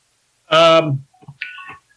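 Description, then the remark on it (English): A phone rings with a short electronic ringtone: a loud, buzzy tonal burst followed by a softer, higher chiming phrase, then silence. “I think that, gosh darn it, my phone went off, sorry.”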